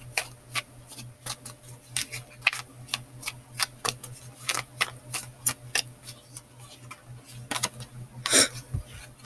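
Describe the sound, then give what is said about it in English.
Tarot cards being shuffled: a rapid, uneven series of crisp taps and flicks, with one louder riffle near the end, over a faint steady low hum and no talking. “Alright, so right now I'm just shuffling.”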